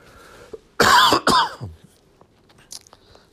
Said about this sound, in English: Excuse me while I cough.